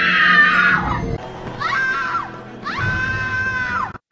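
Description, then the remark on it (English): A woman's high, piercing screams in three long, loud bursts, each wavering then falling in pitch, like a stock movie death shriek, heard alone with no talking. “There's like a female version as well, which is like”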